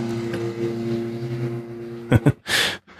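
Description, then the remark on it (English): A low, steady engine drone from an airplane passing over a house hums with sustained low tones for about two seconds, then gives way to a few short, breathy bursts and a brief hissing rush. “Sounds like an airplane just drove over your house.”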